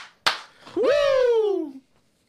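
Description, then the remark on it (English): A single sharp, loud hand clap snaps out, then after a short pause a man lets out a long, falling Ric Flair-style "woo" shout that trails away into silence. “Two claps and a Ric Flair.”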